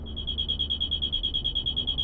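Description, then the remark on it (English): A high-pitched electronic beeping from the trunk of a car driving down a road pulses in a rapid, steady rhythm, almost a continuous warble, running over a low background rumble with no voices. “Suddenly, the couple heard a beeping noise coming from the trunk.”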